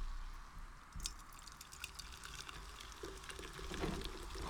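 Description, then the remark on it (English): A drink being poured into a cup, a steady trickle with fizzy, crackling bubbles running for several seconds, fairly quiet and with no voices. “We're going to pour our drinks into the cup.”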